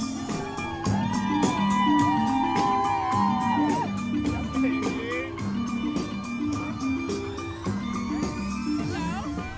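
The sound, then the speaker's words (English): A parade crowd in the streets of the French Quarter cheers, whoops and dances along as the parade, with performers in Bollywood-style costumes, rolls through, over a loud, steady drumbeat and brass-band music, with voices shouting throughout. “The crowd is going wild and dancing right along with them.”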